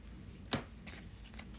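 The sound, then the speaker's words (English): Playing cards being shuffled: a single sharp papery snap, then a run of soft, quick rustling flicks, all fairly quiet with no voices. “Just going to shuffle the pack again.”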